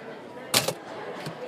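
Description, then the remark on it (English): A few sharp keyboard clicks: a quick pair of taps, then a single softer tap after a pause, over a faint steady background hiss. “Now back to the typing.”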